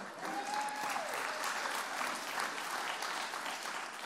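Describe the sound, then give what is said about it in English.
A large church audience claps steadily and densely for about four seconds over figures on first-time children and families, with a whistle and faint cheering rising briefly near the start, the applause holding at an even loudness throughout. “First service thought that was something to cheer about, but I guess you guys don't think so.”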